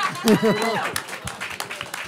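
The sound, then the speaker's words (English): A brief voice at the start gives way to scattered, irregular hand clapping from an audience, people clapping to show they have been on a vacation with the speaker, a loose patter of sharp claps rather than full applause. “clap your hands if you've been on a vacation with me in this room.”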